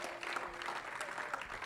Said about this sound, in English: Let's everybody clap our hands just a little bit to the Lord in Jesus' name.